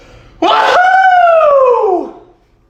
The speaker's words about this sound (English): Woo! Oh, allergy season or COVID. Who knows? Maybe if I concern my neighbors by how loud I sneeze, I can make some friends.